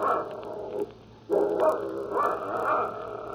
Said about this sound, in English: Shut that dog up.